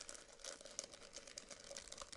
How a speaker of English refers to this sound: Here we go, just typing in the correct details